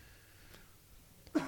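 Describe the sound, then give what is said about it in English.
A quiet stretch ends with one sudden, harsh cough after eating, bursting out at full loudness, with no talking around it. “I just have a little bit of a after-you-eat cough, if that makes any sense.”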